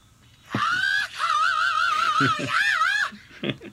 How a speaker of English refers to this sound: I feel like the message would be so disappointing in comparison to the notification sound. I know, but just imagine you're in the bus and that's full volume.